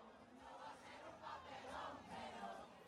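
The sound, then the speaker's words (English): A dense crowd at La Placita de Santurce, a plaza in San Juan, watching a concert on a screen set up there, cheers, screams, sings and dances perreo; a broad wash of many voices with rising and falling swells of shouting and singing, steady and loud throughout with no single clear speaker. “Everyone was, you know, singing, screaming, dancing perreo.”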